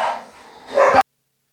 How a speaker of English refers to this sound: Heard a dog fight going on.